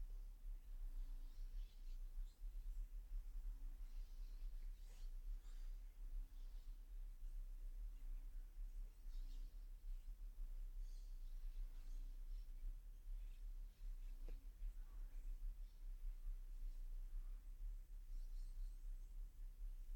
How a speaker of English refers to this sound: Listen to those birds.